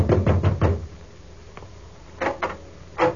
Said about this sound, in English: so I took a fast distance to the home of the late George Grant. I knocked at the door.